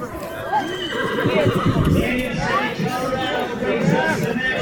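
Horses of cowgirls awaiting their turn in Saturday evening's barrel race whinny and neigh repeatedly beside the grandstands at the San Miguel Basin Rodeo, amid busy outdoor crowd babble, with faint hoof clip-clops and steady background chatter throughout.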